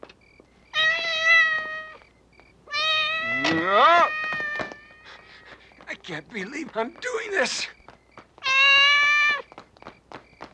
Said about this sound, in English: got this cat crawling all over him, like meow.